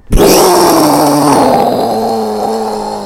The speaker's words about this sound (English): Okay, are you ready for launch? In 5, 4, 3, 2, 1, blast off.